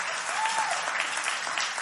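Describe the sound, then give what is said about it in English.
A crowd at New Heights Church applauds the church staff steadily, many hands clapping in a dense, even wash of sound that stays loud throughout, with a brief faint whistle-like tone near the start. “Can we have a hand clap for our New Heights staff?”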